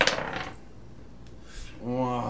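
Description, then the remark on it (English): Dice clatter across a hard tabletop in a quick rattling burst, followed by a few faint ticks as they settle; someone starts talking near the end. “Roll a d6.”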